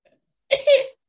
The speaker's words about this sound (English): Achoo. Big manly sneeze there that he just done. Achoo. There you go, he's done a wee high pitch one there.